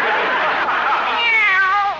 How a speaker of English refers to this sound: Lately, that cat's been as jumpy as a person.